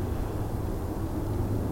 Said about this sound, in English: The jet going out overhead. I think it means I was snoring. I wonder if you can hear the jet.